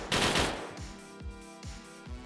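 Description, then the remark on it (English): Gunfire from six shots fired as two three-round bursts by a shooter braced against a wall: a loud opening volley followed by several sharp cracks at steady intervals, each leaving a ringing, metallic tail. No voices are heard. “I'm going to fire 6 shots this time, though. I'm going to go 3 and 3.”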